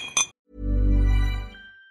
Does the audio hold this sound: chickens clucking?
no